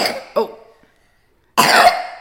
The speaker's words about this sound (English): …'s got a Milo and she's got a bit of a cough